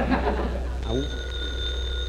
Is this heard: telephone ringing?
yes